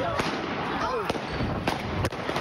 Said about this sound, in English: The gunfire, the screaming, the panic ended with three people dead and 11 others injured.